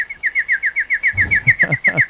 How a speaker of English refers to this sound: That's a chatty bird.